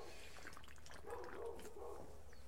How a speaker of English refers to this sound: Let's have a drink of soda water to toast that success.